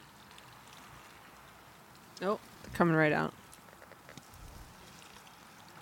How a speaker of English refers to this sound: Shake up our mustard powder one more time and give it a pour.